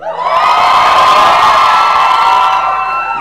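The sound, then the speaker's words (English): A large audience at City of the Lord Church screams and cheers loudly and continuously for about three seconds when asked to scream, a dense wall of excited shouting voices that stays at full volume, with no single speaker standing out. “No, if you didn't scream for that one, scream now.”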